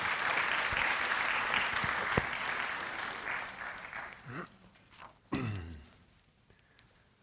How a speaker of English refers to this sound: let's give a round of applause to Rick